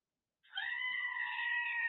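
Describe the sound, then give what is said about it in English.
A recorded goat sound: one long, loud, sustained scream-like bleat that starts abruptly after a short silence and holds steady, with no talking. “By the way, did you know that they have a recorded goat sound?”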